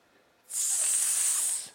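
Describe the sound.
A person imitates a snake with one steady, sharp hiss lasting over a second, fairly loud, starting abruptly after a brief quiet moment and fading at the end.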